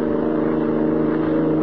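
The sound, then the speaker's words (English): A car engine drones steadily at high speed, doing about 70 on a highway at night, a loud, constant hum with a smooth rumbling tone and no pauses, with no voices. “Say, you're certainly pushing this car along. Must be doing 70.”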